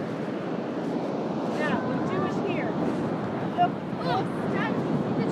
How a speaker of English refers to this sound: Are you coming to the waves? Yeah, come on, we go down the waves.